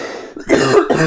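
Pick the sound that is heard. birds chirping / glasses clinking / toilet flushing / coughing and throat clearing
coughing and throat clearing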